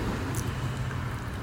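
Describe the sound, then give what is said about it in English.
Real ocean waves tumbling onto a beach on Southern Cape Cod, looking out at Martha's Vineyard, heard as a steady, low, rushing wash of surf with no distinct single crash, filling the short stretch with no voices. “I'm sitting here looking at Martha's Vineyard, and if you're hearing waves in the background, those aren't sound effects, those are the real thing as they tumble in on the beach here on Southern Cape Cod.”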